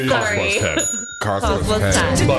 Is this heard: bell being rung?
yes